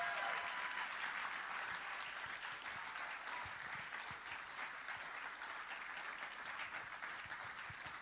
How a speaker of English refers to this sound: I think you can do better with your hand clap this morning.